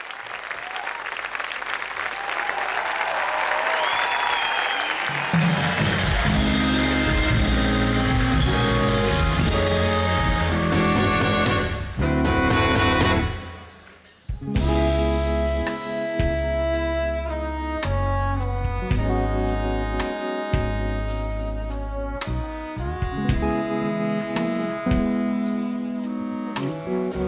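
A live concert recording from the Mercury Prize Awards in 2004 opens with a burst of crowd applause and cheering, then a full band launches into a loud, steady song with bass, drums and melody, briefly dropping out midway before resuming.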